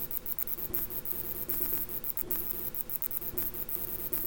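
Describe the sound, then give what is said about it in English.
A bat making a buzzing sound like a bee or hornet: a steady, raspy, insect-like drone with a low hum and scattered crackling ticks running throughout, with no talking. “What it is a bat buzzing like a bee or a hornet.”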